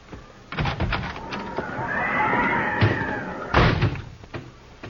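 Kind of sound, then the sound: animal, horse neighing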